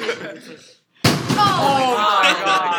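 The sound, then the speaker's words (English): A dropped chair hits the floor with a single loud, sharp crash after a brief pause in conversation, and excited voices immediately follow, talking over the fading clatter. “If I hadn't said it, you probably wouldn't have dropped it.”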